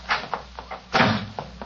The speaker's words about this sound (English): Well, what do you think of that? She slammed the door in my face.